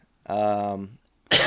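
A loud cough: a drawn-out voiced, throaty rasp, a brief pause, then a sharp, harsh burst of air, with no talking around it.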